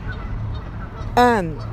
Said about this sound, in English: Oh, my gosh, the geese are so loud.